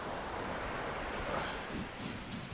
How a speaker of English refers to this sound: Sliding the Currach into the water. The pier is so slippy from disuse that I'm glad of the weight of the boat to hold on to.